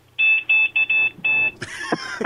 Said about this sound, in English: But have you ever heard an e-scooter horn?